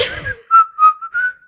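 A person whistles a brief, bright tune close by, three or four clear notes gliding up and down with short gaps between them, after a short breathy sound at the start.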